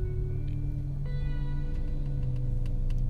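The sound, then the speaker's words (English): A steady low rumble of cars passing outside, with an engine hum that shifts pitch partway through and a few faint clicks on top. Continuous and moderately loud, with no voices. “If you hear cars, please bear with me.”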